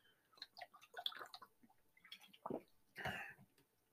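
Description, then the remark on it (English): Someone takes a drink of water: quiet wet clicks and slurps, then a couple of breathy gulps and an exhale near the end, with no talking. “And I gotta take a swig of water here for a second.”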